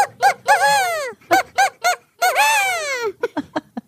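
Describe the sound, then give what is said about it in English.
A man's voice imitates an invented bird call: a run of short honking squeaks, two long warbling whoops that fall in pitch, then quick chirpy blips, loud with nothing else behind it. “I like to do all different types. Bird calls.”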